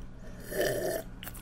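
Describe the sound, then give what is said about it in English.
A breathy slurp as someone takes a sip of vodka, followed by a soft swallow or click, with no talking. “I gotta cool off with a little sip of vodka here.”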